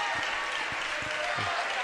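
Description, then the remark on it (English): A gym crowd applauds the team's senior players during a live-streamed game, in a steady, continuous wash of clapping with faint murmurs of voices mixed underneath. “A round of applause for the Dowling seniors.”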